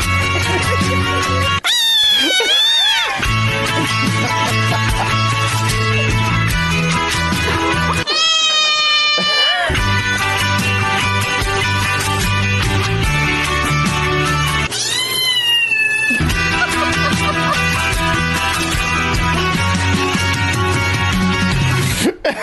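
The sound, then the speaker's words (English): Loud, drawn-out cat meows rise and fall in pitch in three separate bursts over continuous music, sounding as if the cats are singing along with the song. “Those cats are shredding it.”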